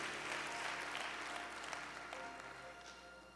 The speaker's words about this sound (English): Can you give the Lord a big hand clap and a big praise for everybody who prayed that prayer with me today? In the name of Jesus.